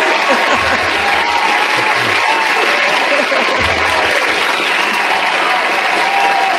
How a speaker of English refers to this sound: I think that deserved an applause, first of all. Can we do an applause? Yeah, I got the applause button.